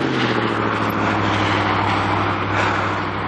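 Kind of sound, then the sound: vehicle, truck passing by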